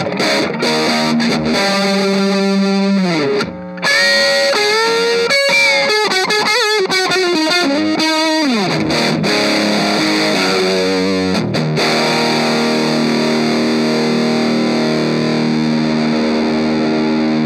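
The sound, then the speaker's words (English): A heavily distorted electric guitar played through an Orange Crush 20RT amp plays loud, gritty riffs with sliding bends and sustained chords, then rings out into a thick, saturated wash. No one speaks over it. “Orange Crush 20RT Review and Demo”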